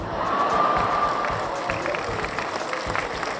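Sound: applause sound effect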